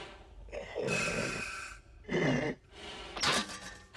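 Heavy, rasping Darth Vader-style breaths of the character Dark Helmet through a respirator-style mask, three loud hissing inhales and exhales in a slow, steady rhythm, alone with no talking.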